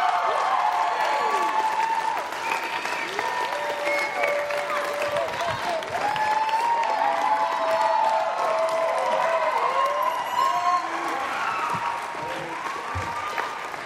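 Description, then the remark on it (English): A crowd claps steadily for the full stretch, applauding a preacher as he comes up: a dense, loud wash of applause with scattered cheers and murmured voices mixed in, holding its level without a clear fade. “Give him a big hand as he comes up.”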